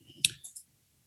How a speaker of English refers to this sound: But in the meantime, if you go to the whiteboard, I'm going to open up voting. And so everyone can now vote by clicking, if you click a card, you can click three cards.